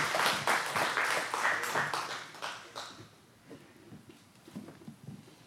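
A church audience applauds in praise of the Lord with dense, steady clapping for about three seconds, then the clapping thins out and fades to a few scattered claps and faint background noise.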